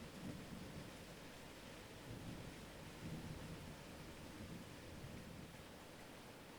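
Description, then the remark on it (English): Steady, dense rain hisses without pause, layered over a deep, rolling wash of ocean waves swelling and receding. No voices, just an even, enveloping wall of water sound. “The hypnotic sound of rain and the soothing waves continue to embrace you as you lie there”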